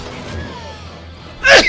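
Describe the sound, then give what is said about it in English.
A single sharp, loud sneeze bursts out near the end after a quiet, low murmur of background noise. “I burped. I sneezed. Yeah, burped, I sneezed.”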